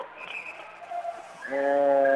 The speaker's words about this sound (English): And a whistle blowing.